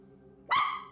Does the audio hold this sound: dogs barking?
yes